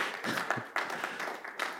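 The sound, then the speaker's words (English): An audience breaks into applause, a dense, steady wash of many hands clapping at once with crisp, bright slaps, sustained throughout at moderate loudness with no voices over it. “Applause, applause, applause.”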